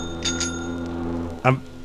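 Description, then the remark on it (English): Two quick bright rings of a bicycle bell sound over a steady, low droning foghorn, followed by a short, louder honk near the end, played from a record. “Someone riding a bike near a foghorn with a marching band coming down the road.”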